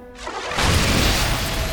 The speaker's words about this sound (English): Bolts of red lightning shot out from Rujin's eyes into Hoori's.